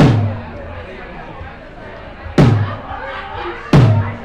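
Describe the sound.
A man slaps his own bare stomach, two sharp, meaty smacks about a second and a half apart with a low, resonant body, following a fading slap at the start, over a background murmur of voices.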